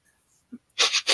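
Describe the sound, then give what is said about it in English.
Three quick, airy sniffs in a rapid run, loud and hissy, as a person audibly imitates the character Calder leaning in and sniffing a halfling, preceded by a brief soft vocal blip. “He sniffs the halfling.”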